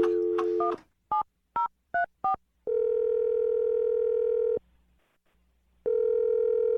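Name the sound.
telephone dialing tones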